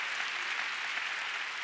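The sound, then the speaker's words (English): A crowd claps steadily for the Lord, a dense, even wash of many hands with no single claps standing out, sustained at a constant moderate level throughout. “Can we give the Lord a big clap?”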